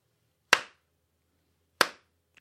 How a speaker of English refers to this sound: Everybody, let's give slow clap